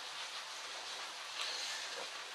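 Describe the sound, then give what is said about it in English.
Heavy rain pours down in a steady, dense hiss that stays even throughout, with a faint brief whistle-like tone rising out of the wash midway. No one speaks. “Earlier this year, while we was working at LAX and it was raining hard like this, we was actually working outside within the rain.”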